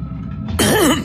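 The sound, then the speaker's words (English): A man clears his throat, a low rumbling grumble that breaks into a loud, raspy, gravelly burst with a rising and falling voiced edge. “having to clear his throat twice.”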